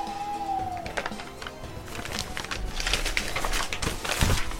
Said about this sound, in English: So right now, I'm in the Paranormal Activity Studios. Our mail owl should be here any moment. It's normally... Oh!